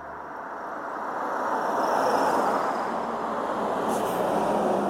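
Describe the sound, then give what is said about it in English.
A steady, broad roar of cars passing on Wisconsin Highway 59 in the village of Cooksville on an April day, building over the first seconds and holding loud as vehicles stream by, with no talking. “And here come the cars.”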